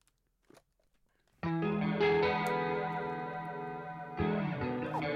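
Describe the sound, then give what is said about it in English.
A loud rock song starts abruptly after a near-silent second, with thick distorted guitar chords sustaining and a brief break before a fresh chord crashes in; no vocals are heard. “But anyways, while we're pouring these up, as we always do, we're gonna play a little bit of music from the birthdays.”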